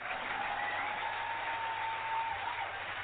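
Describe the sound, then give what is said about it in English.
Dense, steady crowd applause fills the whole stretch at an even level, with a faint thin whistle-like tone drifting through it and no one speaking. “We get the big applause tonight.”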